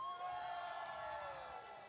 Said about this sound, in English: A very respectable cheer there.